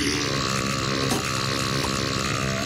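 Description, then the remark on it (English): A long, loud, rumbling burp, low and gravelly, that drags on continuously for a few seconds. “Which is the burp approval. The giant burp.”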